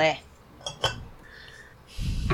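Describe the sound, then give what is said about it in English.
A few light ceramic clinks and a scraping lift as a teapot lid is taken off, followed by a rustling clatter of teaware, with faint voices around. “And I'm going to open it one more time from here.”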